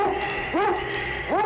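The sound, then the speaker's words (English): A sled dog, Yukon King, lead dog for Sergeant Preston of the Northwest Mounted Police, barks twice while breaking a trail, about a second apart, each bark loud with a rising-then-falling yelping pitch, over a steady droning background. “It's Yukon King, swiftest and strongest lead dog of the Northwest, breaking a trail for Sergeant Preston of the Northwest Mounted Police in his relentless pursuit of lawbreakers.”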